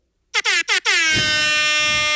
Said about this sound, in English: Oh, you're living for that moment. You're living for the air horn.